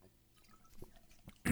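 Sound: drinking water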